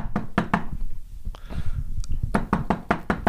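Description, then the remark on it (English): Firm knocking on a wooden front door: a quick burst of three raps, a short pause, then a longer, more insistent series of about six loud knocks, with no talking. “Oh, I'll just get the door.”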